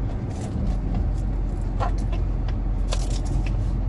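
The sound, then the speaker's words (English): Steady low rumble of road noise from inside a moving car, continuous and fairly loud, with a few faint higher clicks and rustles scattered on top. “I still gotta feel this fucking car.”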